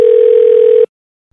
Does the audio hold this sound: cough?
no